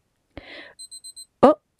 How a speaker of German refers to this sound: oh, hast du gehört? Mein Timer geht jetzt gar ab. Mein Rüeblikuchen ist fertig.